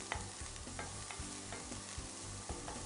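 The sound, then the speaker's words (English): Steady, crackling sizzle of onions and other vegetables frying in olive oil, with a spoon or spatula scraping and clacking against the pan every half second or so as they are stirred to coat them in the oil. No talking. “Okay, hear that sizzle? That's what we want.”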